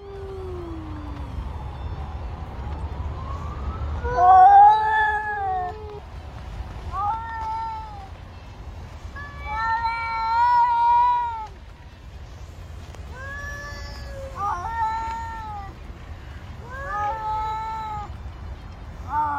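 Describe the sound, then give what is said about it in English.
Angry cats meow and caterwaul at each other in a string of drawn-out, wavering yowls, coming in bursts every couple of seconds, loud over a low background rumble. “It's just kind of like a bunch of angry cats making weird noises at each other.”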